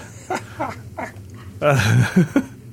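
A small Chihuahua guard dog barks in short, high-pitched yaps, a few spaced-out ones first, then a louder, more insistent burst followed by two quick final yips.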